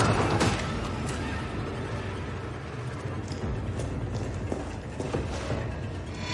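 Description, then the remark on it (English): In a video game, a pursuing character muscles his way through a heavy door into a save room: a loud, sustained grinding and creaking mechanical strain with scattered knocks and rattles, without any voices. “He's muscling his way through the door.”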